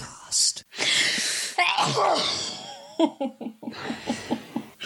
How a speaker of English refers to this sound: Sorry. Bless you.